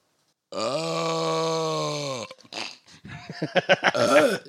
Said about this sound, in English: Okay, before we even start, I have to show you the most infamous burp.